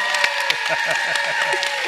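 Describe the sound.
A crowd applauds in a dense, steady wash of clapping, with a few sharper claps standing out and voices murmuring and calling underneath throughout.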